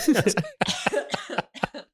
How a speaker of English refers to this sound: Wait, I'm coughing.